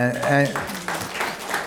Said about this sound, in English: Is this pity applause because I'm retiring? Because if it is... I think you're just working on the applause line.